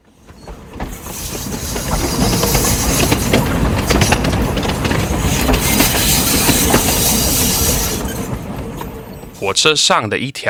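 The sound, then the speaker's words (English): A train rumbles and clatters along the tracks with dense, steady rolling noise and rhythmic metallic clicks, loud, fading briefly before a voice starts speaking near the end; a morning train between Miaoli and Hualien in Taiwan. “A snake rides on a train.”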